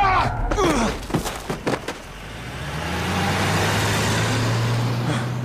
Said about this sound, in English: As the limousine screamed round a corner, the back door flew open and I was sucked out.